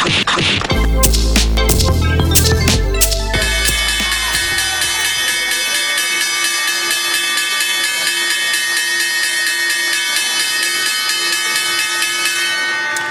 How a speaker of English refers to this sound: No, that is not the sound of the Breakthrough News IPO, but it was the sound of the ringing of the bell at the New York Stock Exchange here.